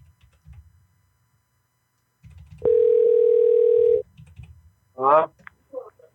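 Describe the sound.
Soft clicks and taps as a phone number is dialed give way to a loud, steady telephone ringing tone lasting over a second, then a brief voice answers after a short pause.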